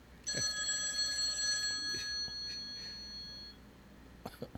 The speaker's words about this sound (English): So can you hang up so it stops ringing? Oh, there it is. Phone, there it is.